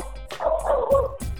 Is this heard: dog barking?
yes